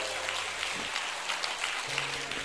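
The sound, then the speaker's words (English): An audience claps steadily in praise of the Lord Jesus, a dense wash of many hands applauding together, continuous and fairly loud with no voices standing out. “Would you give the Lord Jesus, our Savior, a great applause of praise?”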